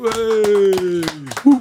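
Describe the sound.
A handful of sharp, evenly spaced claps welcoming footballer Jermaine Francis as a guest ring out, nearly drowned under a loud, sustained voice that slides slowly downward in pitch before a brief final vocal burst.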